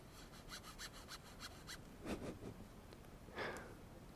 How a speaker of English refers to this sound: Alright, I'll give you some scratching on my tent sounds. This should sound like it's on your right. And this should be on your left.